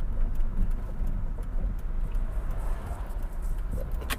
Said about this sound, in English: I don't like this car driving so close behind me. I'm gonna let them go.